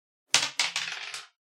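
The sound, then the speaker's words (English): Dice are rolled on a game's mobility table, coming up 3, clattering across a hard surface: a sharp first hit followed by a quick run of bright, rattling clicks that taper off within about a second, with no voices. “So first we roll on the mobility table.”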